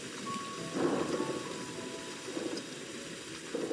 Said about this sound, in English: Then she vanished, and there was thunder in the sky.